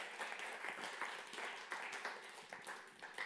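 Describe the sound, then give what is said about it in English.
A crowd claps steadily in dense, overlapping applause, a continuous crackling wash of many hands that holds at an even level for a few seconds without any voices, a hand clap of praise to the Lord during a sermon. “Give the Lord a big hand clap of praise today.”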